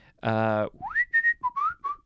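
A person whistles a short phrase: a rising swoop, then a few brief steady notes of varying pitch, preceded by a loud, buzzy voiced tone.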